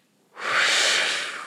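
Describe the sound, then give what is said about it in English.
A single hard, forceful exhale to blow out a wick: a loud, airy rush of breath that starts after a brief silence and holds steady for about a second. No voices. “So you just breathe really hard.”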